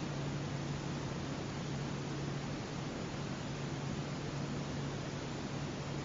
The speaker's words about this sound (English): One way of connecting with the spaciousness is also listening to the silence behind the sound of the air conditioning. The silence from which all sounds arise.